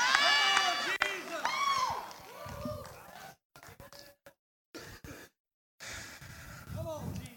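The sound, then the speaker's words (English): Several audience voices shout back at a pastor over one another in a loud, overlapping burst, then the clamor cuts out in choppy gaps before a few scattered voices rise again at the end. “Now, all y'all shouting me down like y'all, I know all y'all don't use your turn signal.”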